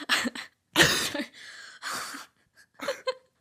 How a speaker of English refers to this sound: Was that a cough or a laugh? I don't know, I started like choking on my breath.